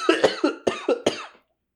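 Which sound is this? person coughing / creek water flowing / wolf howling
person coughing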